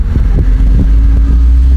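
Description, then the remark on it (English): A bus's engine rumbles loudly, with a deep, steady drone and a low hum as it drives past, no voices present. “So I wonder what bus that is.”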